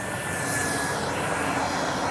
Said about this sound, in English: Here comes another train.